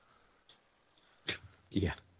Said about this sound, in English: Uh-oh, the dog's coming in. Now the dog's in here.